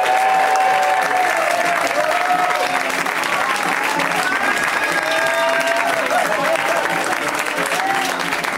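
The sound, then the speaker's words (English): A crowd at a UCB comedy show applauds a comedian being introduced, a dense wash of clapping at an even, fairly loud level throughout, with scattered cheers and whoops rising above it. “Coming from Chicago, new to Los Angeles, California, give it up for”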